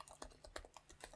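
Rapid, uneven clicks of fingers typing on a computer keyboard, fairly quiet, with about a dozen keystrokes in quick succession and no voices.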